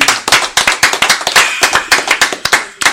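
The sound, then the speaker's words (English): An audience at the Power Up Summit claps steadily as the guest Honeycomb is introduced, with sharp, rapid claps overlapping in a dense, brisk rhythm that holds at a fairly loud, even level for the whole stretch. “Let's go ahead and make some noise for Honeycomb.”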